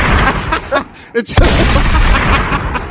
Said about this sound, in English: gunshots that he didn't shoot, bro.